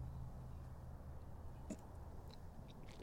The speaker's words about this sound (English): I get a sip real quick.